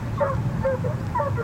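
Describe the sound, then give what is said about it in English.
A pack of hunting dogs bays in overlapping, drawn-out cries while chasing a fox near Hound Tor, England, several voices calling at once over a steady outdoor rumble. “Unless an appeal is successful, fox hunting with dogs, like these giving chase near Hound Tor, England, is to cease in 3 months, according to an act of the House of Commons.”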